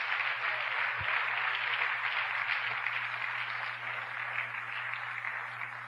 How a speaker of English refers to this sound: Give the Lord a round of applause, everybody.